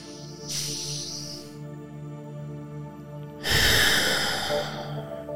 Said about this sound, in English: And let's do one more round. One more big deep breath.